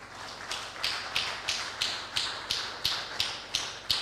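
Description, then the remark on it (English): An audience claps to welcome a married couple, in a steady, even rhythm of roughly a dozen sharp claps at about three per second. The clapping is moderately loud, with no voices over it. “Clap for them, please.”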